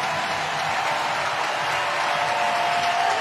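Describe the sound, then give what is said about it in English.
A big ballpark crowd of Giants fans cheers and applauds Madison Bumgarner in a steady, continuous roar, dense and fairly loud throughout, with no single voice standing out. “And Bum's going to depart and listen to this crowd.”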